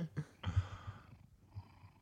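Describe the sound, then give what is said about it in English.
A cat that had been snoring purrs right up against the microphone after being poked with it, a low rumbling throb pulsing steadily, with brief rustling and a soft high tone over the top; no one speaks. “Oh, I poked him with the microphone and now he's purring instead of snoring.”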